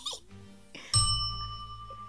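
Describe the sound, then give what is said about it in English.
A bell rings out with one sharp strike, its bright, clear tone lingering and slowly fading. A few faint, muffled sounds come just before it. “I like my bells still.”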